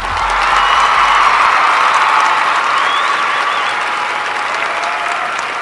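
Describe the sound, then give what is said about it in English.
Steady, loud applause from an in-studio audience getting ready for the new year, a dense wash of many hands clapping at once that holds fairly even for several seconds before easing slightly toward the end. “That is an in-studio clap, too.”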